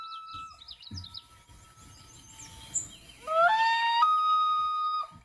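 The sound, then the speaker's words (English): An agitated loon with a newly hatched chick beside it gives a loud, insistent wavering alarm call as an eagle flies overhead, the call rising and holding for a couple of seconds, with fainter bird chirps and outdoor background noise earlier on. “That's a very upset loon that has a baby chick by it, and an eagle is flying over.”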